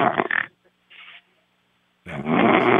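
A harsh, guttural animal roar in two loud, rasping bursts, separated by a short, quieter grunt and a pause of near silence.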